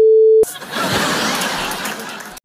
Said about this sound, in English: Transition noises.